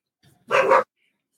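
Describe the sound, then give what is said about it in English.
A single loud, sharp bark from an excited dog, lasting a fraction of a second, preceded by a faint low grumble, with silence afterward and no talking. “My dogs are excited.”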